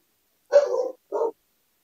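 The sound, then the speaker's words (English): A big dog barks twice at the door, fairly loud: a longer rough bark followed by a shorter one after a brief pause, with silence around them and no talking. “My dog's acting stupid.”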